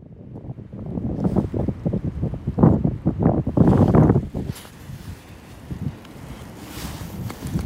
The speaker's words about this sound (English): If you can hear that, that's the end of Storm Eunice. And I've crouched down. I'm actually up in the branches of an oak tree, except that the branches are lying on the ground. And I'm hoping that the wind won't be too annoying for you.